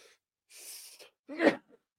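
A person sneezes once: a sharp hissing intake and build-up, then a loud, explosive burst that cuts off quickly into silence.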